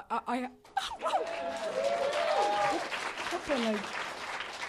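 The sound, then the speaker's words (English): A comedy show audience claps steadily for several seconds in an applause break, a dense wash of applause mixed with cheers and laughter, while a voice briefly speaks at the start and others call out over it. “If you want another applause break, just show them your Slater Kenny t-shirts, which you are wearing.”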